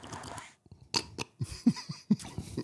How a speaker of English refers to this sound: And he's chewing and he's looking. Hold on. And he's got a mouthful of donut. Now he's chugging some coffee.